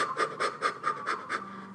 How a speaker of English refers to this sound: You can do the fire breath.